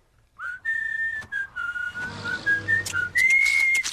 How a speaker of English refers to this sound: Starts with whistling.